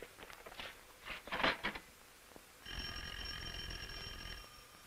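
An old, heavy telephone bell rings in one steady, shrill burst lasting about two seconds, preceded by a few louder clunks and rustles of movement.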